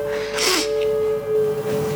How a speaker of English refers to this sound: That's me sniffing because I have a lot of snot.